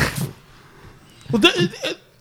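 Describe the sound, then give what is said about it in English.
A sudden sneeze bursts out partway through, a short breathy catch followed by a sharp, noisy expulsion, after a brief quieter sound at the start. “Bless you.”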